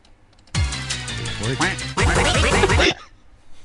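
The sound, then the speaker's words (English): Loud duck quacking in two dense bursts lasting about two and a half seconds, nasal and raspy, with quiet before and after. “I know there's ducks around here somewhere.”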